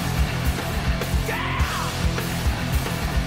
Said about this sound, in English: Can I scream?